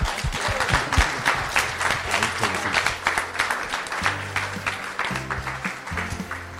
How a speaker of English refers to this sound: Join me in giving these guys a round of applause.